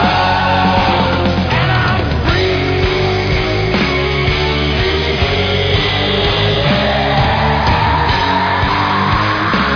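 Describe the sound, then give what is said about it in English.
A loud, dense rock track where a raw screamed vocal tears over distorted guitars and pounding drums, the whole mix driving steadily without a break. “Love the scream.”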